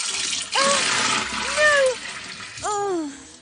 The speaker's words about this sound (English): Oh, you didn't have to pour it all the way. You could have just poured the large one into a medium-sized cup.